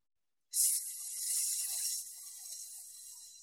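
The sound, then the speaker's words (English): A person exhales a long, steady hissing "sss" sound, imitating a snake, during a breathing exercise, starting abruptly and holding for about three seconds, moderately loud with no other sounds. “And the sound that I'm going to invite you to try out as you exhale your breath is the sound of S, like you're like a snake.”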